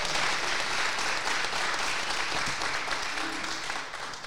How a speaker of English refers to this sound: We are okay. We are more than okay. All right. That's worthy of some applause.